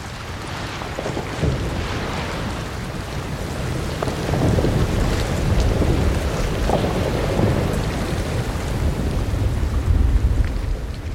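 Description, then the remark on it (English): Antarctic icebergs melting in the sea: a dense, steady crackle and fizz of popping ice over a deep, rolling rumble that swells now and then, continuous throughout with no voices. “Wonderful, detailed sound recordings of Antarctica's melting icebergs.”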